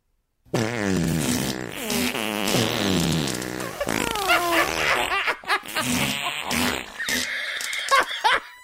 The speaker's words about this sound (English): Oh my God, that's all of the farts at once. That's the best. Oh my God, that's so funny.